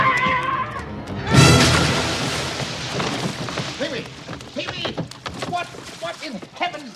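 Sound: door being broken down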